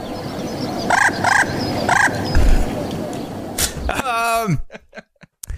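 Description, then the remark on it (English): Messenger pigeon calls: three short, bright bursts in quick succession, then a louder warbling call that slides downward, ending in a few sharp clicks, over a faint background hum. “That's what they sound like. I know. Yeah. It took me a long time to find a messenger pigeon.”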